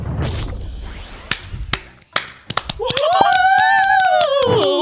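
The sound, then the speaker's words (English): Scattered, irregular hand claps start up and grow denser, and in the second half a loud, sliding vocal tone rises and falls over the continuing applause. “Clapping.”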